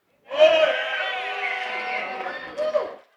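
A single voice cheers and whoops loudly for about three seconds, a sustained, harmonically rich shout that rises in pitch briefly near the end, with no other talk alongside.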